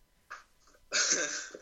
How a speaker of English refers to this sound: My shoe just made a farting noise, sorry. I'm so mature.